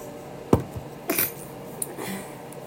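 A single quiet sneeze: a brief sharp burst followed a moment later by a breathy, hissing exhale, with only faint background noise and no talking.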